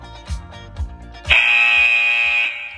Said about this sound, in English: That's you in your last 10 seconds. You need to get ready to pick it up. As soon as that buzzer goes, back to your running. Ready?